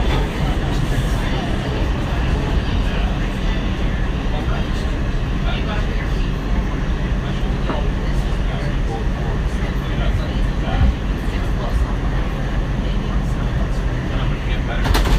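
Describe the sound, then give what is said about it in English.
A Bronxbound 2 subway train roars along between stations toward Park Place, a loud, continuous rumble and rattle of wheels on track that holds steady throughout, with faint, indistinct voices buried in the noise. “This is a Bronxbound 2 train. The next stop is Park Place.”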